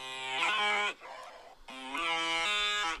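Two loud cow moos with a brief quieter gap between them, the calls bellowing and harmonic-rich, separate clips edited together, with no talking.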